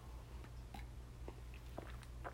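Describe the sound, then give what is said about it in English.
Quiet sipping of water, with a few soft wet mouth clicks and gulps spaced out over a low steady hum, no talking. “And I'm about to take a sip of water.”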